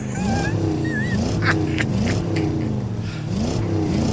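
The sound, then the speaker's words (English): A loud engine is started and revs over and over, its pitch climbing and dropping in quick repeated surges under a steady rumble, with a few brief clanks partway through and no one speaking. “So we are starting the engine.”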